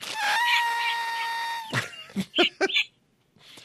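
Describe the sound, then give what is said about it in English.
A person's voice imitates a snowy owl call, a long, strained, wavering cry followed by a quick series of short, harsh barking hoots, fairly loud. “I like your snowy owl. Your snowy owl sounds better than this.”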